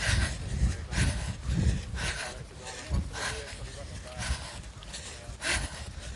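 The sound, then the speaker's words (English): Heavy, rapid breathing after a parkrun: loud, airy breaths repeating roughly once a second in a steady rhythm over a low rumble of background noise, with no talking. “Sorry about the heavy breathing.”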